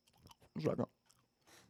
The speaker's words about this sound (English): Oh, you got your gum still? I got my gum, and I'm chewing loud as fuck.